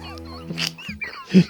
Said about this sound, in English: You like the duck? Where did the duck come from, mate? It's our favourite.